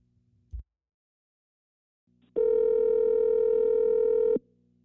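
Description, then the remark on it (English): A short click like a handset being picked up after a call was disconnected, then a pause before a steady, buzzing telephone dial tone hums loudly for about two seconds and cuts off abruptly as the caller is redialed. Nobody speaks. “To get Acid back on the phone here.”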